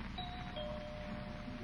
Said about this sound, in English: Guess she didn't hear the bell.